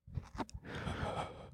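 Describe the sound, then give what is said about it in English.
A person imitates eerie, ghostly breathing: a few short mouth sounds, then one long, drawn-out breathy exhale, with no talking. “American Airlines passengers have reported ghoulish moans and ghostly breathing over the intercom systems on several flights in recent months.”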